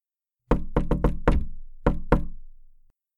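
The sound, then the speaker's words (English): Seven firm knocks on a wooden door in the familiar 'shave and a haircut, two bits' rhythm: a quick run of five raps, a pause, then two final knocks. “I'll go over to the door, look through the peephole just to make sure, and then open the door.”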